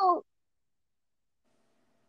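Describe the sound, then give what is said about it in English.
A voice gives a single short, nasal meow in imitation of a cat, loud, then falls silent for the rest of the moment. “Other than the cat noise, it was pretty accurate.”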